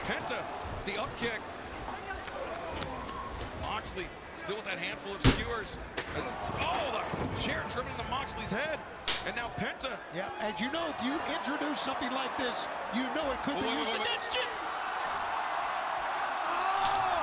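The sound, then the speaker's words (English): A large crowd at Wembley Stadium roars and shouts in a loud, sustained wall of voices during a wrestling match between Jon Moxley and Penta, as Moxley skewers Penta, punctuated by sharp thudding slams, with the noise swelling louder toward the end. “Listen to that crowd.”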